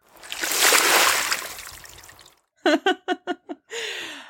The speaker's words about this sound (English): Oh, well, again, the splash feels a little dicey